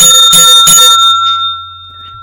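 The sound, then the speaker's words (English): A small bell, rung to end a show, rings twice in quick succession, bright, then its clear metallic tone lingers and slowly fades into quiet. No one speaks. “Follow our show so we get a better bell.”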